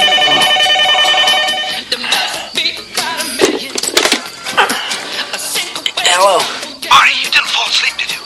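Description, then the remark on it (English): A telephone rings with a steady, close electronic trill for about two seconds, then stops as busy film-style sounds and voices take over. “Marty's call to adventure is a phone call.”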